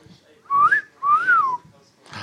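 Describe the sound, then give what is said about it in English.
A loud wolf whistle: two sharp whistled notes in quick succession, each sliding up in pitch and then curving back down, with faint background noise between and after. “Wolf whistle. Wolf whistle.”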